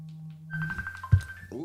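A mobile phone rings with an incoming call from the owner's mother, a steady, high electronic tone that briefly steps lower in pitch, accompanied by a low background hum and a single soft thump.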